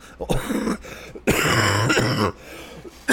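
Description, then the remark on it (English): A loud cough with throat-clearing rasp: a short burst, a longer harsh rasping stretch of about a second, then another brief burst starting at the end, with no talking. “I didn't mean to cough in your ear, and I apologize.”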